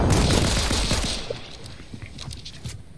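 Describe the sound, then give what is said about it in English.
Video game gunfire rattles in a dense, loud burst of rapid shots, then thins out into quieter, scattered sharp cracks over the final couple of seconds. “Oh, somebody, are you shooting at me?”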